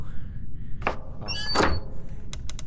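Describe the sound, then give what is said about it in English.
A door thuds shut, a couple of solid knocks with a brief scraping rattle, followed by a quick run of sharp latch clicks. No one speaks. “Sit down, close the door!”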